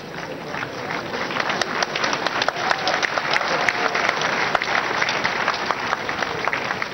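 A crowd claps steadily for several seconds, a dense wash of many hands with sharper individual claps popping out, sustained at an even loudness with no speech.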